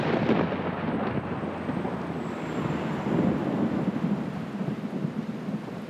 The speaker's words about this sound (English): Night falls quite quickly and torrential rain starts up.